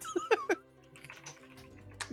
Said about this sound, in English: I can hear the typing.